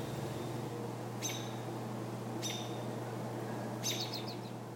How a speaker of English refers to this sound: The other sounds I miss from Earth are natural sounds. So the sound of rain or the sound of really strong wind, those are some of the things that I miss from sounds on Earth. And of course, birds singing, you know, that kind of thing.